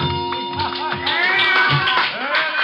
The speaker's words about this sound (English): Out in the center of the floor, a girl has just finished her dance. One look at her, and I can see why the ovation.